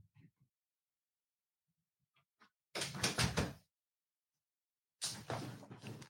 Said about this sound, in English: Stand by. I got to shut this door behind me.